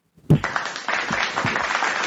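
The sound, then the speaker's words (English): Someone claps their hands several times in a row at a steady, unhurried pace. The sharp claps ring out loudly with no voices over them. “Okay, let me clap for that.”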